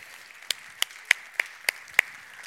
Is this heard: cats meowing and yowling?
no